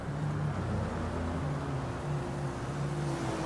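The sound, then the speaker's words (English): A car engine hums low and steady at a slow, even pace as the car goes really slowly, its drone continuous with no talking over it. “This car is going really slow.”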